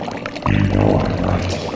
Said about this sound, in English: Dude, what's up with the toilet? Is the water boiling or something?